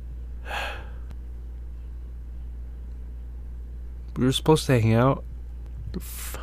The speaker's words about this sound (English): Sorry, you're gonna hear me sniffling boogers and shit.